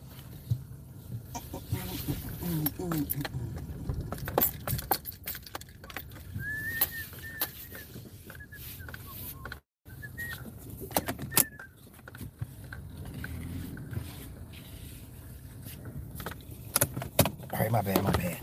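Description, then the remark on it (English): A car is being moved: steady low engine rumble with scattered clicks, jingling keys and rustling, a brief dropout midway, then more handling noises near the end. “Let me repark my car.”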